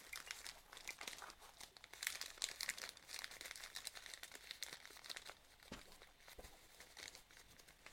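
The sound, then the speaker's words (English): Paper crinkles and crumples continuously for several seconds, with dense irregular crackling and a few sharper crunches as a separate piece of paper is pushed and stuffed in. No voices. “So a piece of paper. Stream. Stuff it in.”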